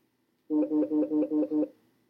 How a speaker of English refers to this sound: Now it's coming through the speaker. What's that noise? Oh, I have my phone on silent and it's vibrating.